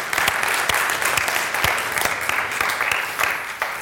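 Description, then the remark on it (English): The audience of Community Grace church applauds to celebrate last year's goals, many hands clapping in a dense, steady patter with a few sharper individual claps standing out. It holds at an even, fairly loud level throughout, with no voices. “Can you give him an applause for that?”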